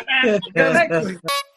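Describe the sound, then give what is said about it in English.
A voice imitates a car horn honking with about four loud, buzzy, nasal bursts in quick succession, the last one short and sharper, with no other sounds around them. “But as you're passing by, don't honk at me.”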